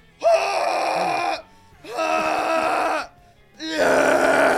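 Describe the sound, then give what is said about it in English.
A voice imitates the guttural screaming of a sound therapy session, where a man screams at someone lying on a massage table: three long, loud, harsh bursts separated by short pauses, each a strained, throaty yell with no words. “Where basically this guy, he has you lay down on this massage table. And just screams at you. Just guttural noises.”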